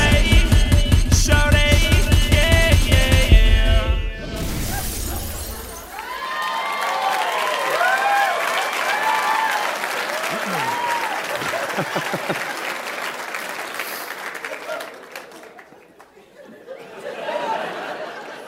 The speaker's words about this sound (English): See, you clap and you encourage this sort of behavior from us.